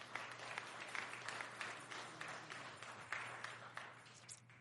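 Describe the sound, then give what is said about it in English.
An audience claps together on resurrection morning, a dense steady patter of many hands with a few brighter accents, sustained for several seconds with no voices over it. “Can we clap our hands for that truth right there?”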